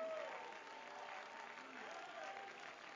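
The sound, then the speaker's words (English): An audience claps their hands in praise of God during an evening worship service, a dense, steady wash of applause, with faint voices calling out underneath. “Somebody ought to clap your hands like thunder.”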